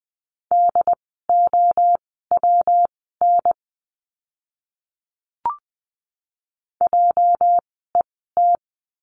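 Morse code words keyed at 20 words per minute as a steady mid-pitched tone in quick dots and dashes, several groups separated by pauses, with a single brief click midway, no voices.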